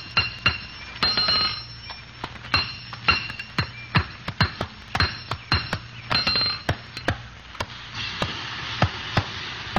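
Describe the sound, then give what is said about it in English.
A blacksmith hammers metal on an anvil in a blacksmith shop, where a horse that lost a shoe is brought for a new one: loud, ringing clangs in an uneven rhythm, some blows quick and doubled, others spaced apart, over a low steady hum and no voices. “We had to head for the nearest blacksmith shop, so we turned north.”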